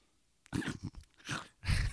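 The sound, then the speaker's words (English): A dog chews and crunches on treats, giving a short run of irregular, gritty crunching bursts with brief pauses between bites, and nobody speaking. “He's walking away still making those noises.”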